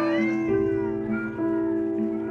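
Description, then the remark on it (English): Several barn kittens in boxes meow at once in a continuous, overlapping chorus of drawn-out, wavering cries, fairly loud, with no talking. “Tom Markley and Jesse Weaver were arriving on campus with boxes full of kittens destined for the roof.”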